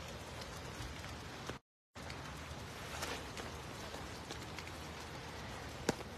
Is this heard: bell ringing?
no